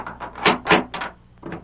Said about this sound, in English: Get this door open and dry up.